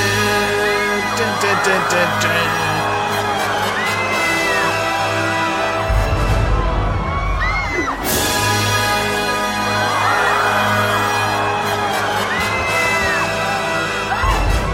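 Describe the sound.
A large group of ballerinas in a stage show scream together, loud, shrill and overlapping, sustained throughout with a sharp swell midway, as a corpse comes flying down on a noose.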